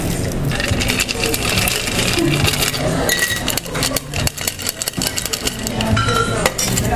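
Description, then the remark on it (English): A shaken cocktail of rye bourbon and mint pours steadily as it is double strained into a fresh glass of ice, a continuous splashing hiss broken by bright clinks of ice and metal, with no talking. “I'm going to get a fresh glass of ice, and then I'm going to double strain the cocktail, so the mint leaves do not get into the drink.”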